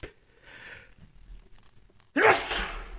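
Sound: sneeze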